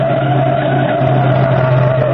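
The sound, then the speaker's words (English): A car's tires skid and squeal in one sustained, steady screech, loud, with a rough engine rumble underneath and no voices, as a stolen wine-colored Royal Coupe is forced to the curb. “I'm going to force it to the curb.”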